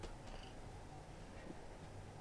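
A pet cat named Billy purrs, a soft, steady low rumble that continues without a break for a couple of seconds, with no voices over it.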